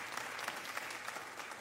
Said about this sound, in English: I'll note that as an applause for him and not for me, so just to put that one in the ledger for our speaking today.